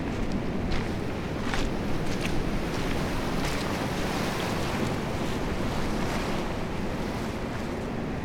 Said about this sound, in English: Such a glorious colour, isn't it? Deep green out there, and then blue coming in, and the white, intersected by the white of those waves, breakers. And there's a cliff on either end of the beach, so we're sort of in an inlet, aren't we,